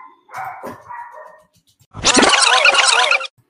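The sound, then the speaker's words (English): A dog in a house barks, first a thinner, whiny yelp and then, after a brief pause, a loud, harsh, drawn-out bark. No one speaks. “Okay, so did you hear the dog bark?”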